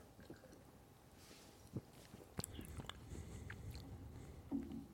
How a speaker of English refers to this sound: All right, I'm going to try. Unless it's like an American lager. I'm going to take a big gulp of it rather than a tiny sip. See if it brings back any chugging memories.